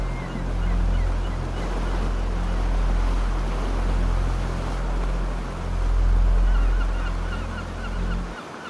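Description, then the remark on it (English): Ocean waves wash in a continuous broad roar that slowly swells and recedes, with a low steady rumble underneath and no voices. “But you notice you can also hear the ocean.”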